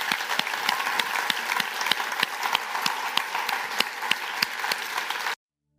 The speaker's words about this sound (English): And we're going to finish this by applauding you right now, every one of you.